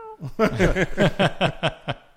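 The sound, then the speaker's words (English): A person imitates a cat with a quick run of about eight short, rhythmic meow-like vocal bursts, fairly loud, each rising and falling in pitch. “He watched me play with this cat language.”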